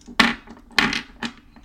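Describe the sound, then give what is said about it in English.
Dice clatter onto a wooden table in three loud bursts spaced unevenly over a couple of seconds, each a sharp rattling knock that quickly dies away. No one speaks. “Get out my dice.”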